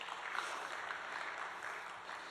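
An audience claps together in a dense, steady wash of hand claps that holds at an even, moderate level for a couple of seconds, with no voices standing out.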